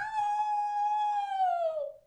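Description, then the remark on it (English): A single sustained wolf howl rings out clearly for about two seconds, holding a steady pitch before sliding downward at the end, with no talking over it. “The Wolf was a new addition,”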